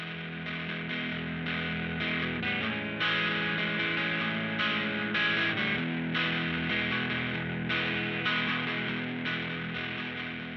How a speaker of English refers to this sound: To go along with that and add a little extra punch, there's also another electric guitar part with distortion.